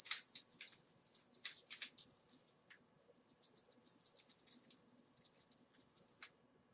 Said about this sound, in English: This is a bell branch, and we're going to be using this now. As it was in the days of Ma Mor, I call the bards, seers, and the druids of the past to hear these bells and join with us in this, our sacred rite.